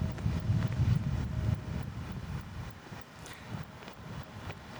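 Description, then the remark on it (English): Steady low rumble of wind buffeting an outdoor microphone, loud and gusty at first, then easing slightly while continuing throughout with no voices. “So when we receive communion today because of these windy conditions, it's just a reminder.”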